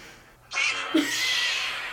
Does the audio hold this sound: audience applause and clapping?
no